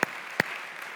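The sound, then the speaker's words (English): An audience claps to honor those who led the praise singing, a steady rustling patter of many hands with two sharper, louder claps standing out near the start. No voices are heard. “And while you're in a clapping mood, let's give God thanks for that prayer”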